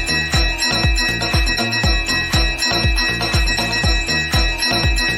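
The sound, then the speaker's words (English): A bell rings out repeatedly in a steady, quick rhythm, its bright metallic tones hanging in the air over a deep, regular thumping pulse. It is loud, with no one talking. “Ring the bell.”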